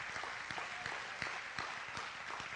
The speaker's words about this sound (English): Come on, let's give him a hand. Clap of praise this morning.